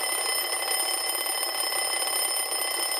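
A timer alarm rings continuously, a bright, steady electronic tone with a rapid buzzing pulse, loud, filling the whole stretch with no voices, signalling that a speaker's time is up.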